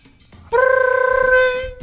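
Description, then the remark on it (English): A telephone rings in a house, heard from the kitchen, with a single loud, steady electronic tone held for over a second, following a brief stretch of faint background noise. “Is that the phone?”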